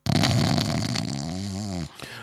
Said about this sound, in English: Oh my God. It was like an orchestra of snoring. It broke out around the place.